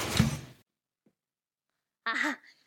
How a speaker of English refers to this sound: Shut the door!